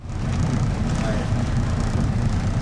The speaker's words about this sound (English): is at the helm of his research boat as he takes off from Lahaina Harbor. He's on a personal quest. So we're going to go out and find some whales. Okay, here we go.